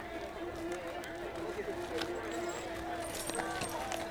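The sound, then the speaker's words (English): Horse hooves clip-clop steadily alongside the rumble of a stagecoach's rolling wheels on a foggy spring day, set against a continuous busy backdrop of murmuring voices and a thin, high insect-like drone of buzzing bees. “The sound of horse hooves and insects and the wheels of the stagecoach and the chatter of people linger.”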